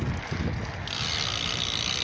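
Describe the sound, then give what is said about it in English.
A bicycle freewheel ratchet clicks in a rapid, steady buzz of ticks while riding past City Park, mixed with constant wind rush over the microphone, with no one talking. “Just listen to some of that bike.”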